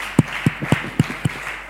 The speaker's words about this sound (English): Now it should start for you to clap for me as well.